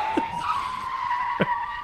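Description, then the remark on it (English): Car tires skid on an icy road in one long, steady, high-pitched squeal lasting nearly two seconds, fairly loud, with a couple of brief bumps partway through. No one speaks. “gets into the cop car to go buy more donuts and just slides into the horizon.”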